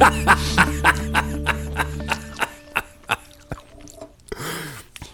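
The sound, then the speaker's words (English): Chewing of crisp almond spritz cookies made with almond flour and almond extract, a steady series of crunchy bites at a quick, even rhythm, followed by a soft breath near the end. No one speaks. “I think I must enjoy it because I'm not even saying much. I just keep eating.”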